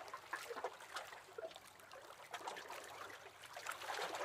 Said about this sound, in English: The charming little dinghy bobs and nods on the water. As the little lapping waves carry it up and down at the jetty.